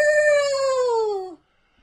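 A dog gives a single sustained, high howl that slides slightly downward in pitch and cuts off abruptly after a little over a second, clear with no talking.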